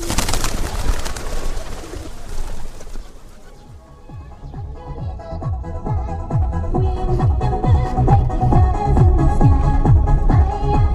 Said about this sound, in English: our guide and translator, hands us seed to feed the pigeons, an exercise for good karma.